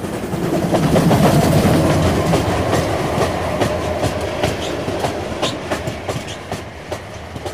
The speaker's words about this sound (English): I remember sitting there, listening intently to the sound of the steam trains. And as I recall, it made absolutely no impression on me whatsoever.